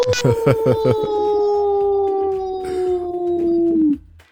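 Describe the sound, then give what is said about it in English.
A person imitates a wolf, letting out one long, loud, sustained howl that holds steady and then dips at the end, preceded by a few short rough vocal bursts. “And I'm just going to howl like the wolf.”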